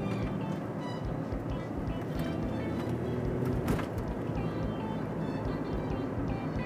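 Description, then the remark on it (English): A car with a loud aftermarket muffler rumbles steadily, its deep, throaty exhaust drone filling the whole stretch with a few faint clicks and rattles on top. “It cracks me up when people's got those cars and got the mufflers on them. The sound of the vehicle doesn't even match the car.”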